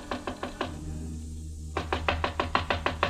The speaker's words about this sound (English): There was a light on inside the room, and I knocked on Jan Svensson's door.